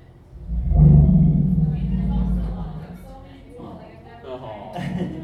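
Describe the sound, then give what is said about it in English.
A deep, resonant elephant rumble, an elephant's way of expressing affection, swells loud for about two seconds, then fades into softer, lower rumbling calls that trail off toward the end. “And then this is how an elephant says, I love you.”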